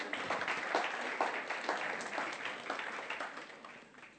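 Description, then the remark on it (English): A crowd claps steadily for about four seconds, a dense crackle of many hands with a few sharper claps popping out, fading slightly toward the end. “Yay, give him a round of applause.”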